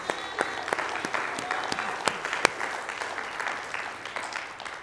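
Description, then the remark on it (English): A roomful of people give a hand clap of praise to the Lord in the morning, a dense, steady wash of hand clapping with a few sharper claps standing out, sustained at moderate volume for the whole stretch. “Can we give the Lord, please, another hand clap of praise this morning?”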